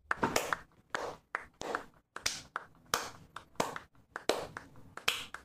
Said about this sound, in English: I bet those claps sound terrible. Yeah, mine are definitely peaking. Yep, mine's peaking. When I put my filter on it, it's going to sound awful.